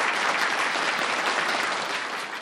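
A steady round of applause from a group at the close of a meeting, for a member's reading, dense and even clapping that holds loud throughout and begins to taper slightly at the end, with no voices over it.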